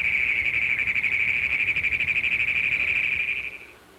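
A frog calls in one long, rapid series of chugging pulses that runs steadily for several seconds at a fairly strong level, then stops abruptly. No voices are heard.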